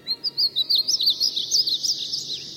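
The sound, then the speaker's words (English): Painted buntings in a tree near a town pond sing a quick, warbling string of high, bright notes that run together in a continuous, musical stream, clear over a soft background hum. “And then I heard their song, like a dream fading away.”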